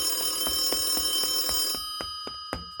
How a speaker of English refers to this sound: Cut to Niall running, searching for a ringing phone that he really, really needs to answer.